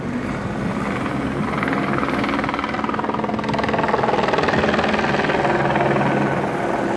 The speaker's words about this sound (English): And you see helicopters overhead once more. That's Venice Beach for you.